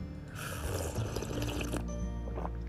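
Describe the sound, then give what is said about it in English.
Coffee is poured on a farm in a steady, splashing stream for about a second and a half, then it stops abruptly, leaving a quiet background tone. No one speaks. “Coffee cheers, my friends.”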